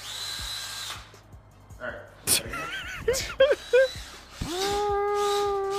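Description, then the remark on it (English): A big power drill spins up near the end and whines steadily and loudly for over a second while drilling a hole, after some scattered squeaky, voice-like sounds and rustling handling noises. “So now what we have to do is we have to drill a hole in this bitch.”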